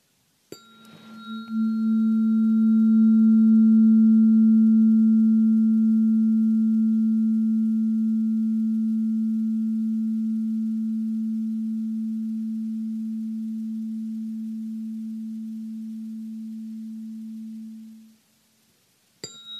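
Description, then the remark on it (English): A tuning fork is struck once and rings with a steady, pure low hum and faint higher overtones, sustaining for about seventeen seconds as it slowly fades before being cut off abruptly. “I'm not really familiar with the tuning forks.”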